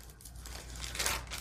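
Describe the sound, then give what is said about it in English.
A thin tracing paper page is turned, giving a crisp, continuous crinkling and rustling that swells toward the end over a low steady hum. “A little bird in the corner, mindful on the tracing paper page.”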